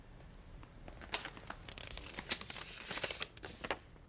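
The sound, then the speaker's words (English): Quiet crinkling and rustling of paper, a run of crisp crackles and soft snaps over about four seconds as a folded sheet with an ideal salary written on it is opened out, with no voices. “No one should ever leave the house without their ideal salary written on a folded up piece of paper.”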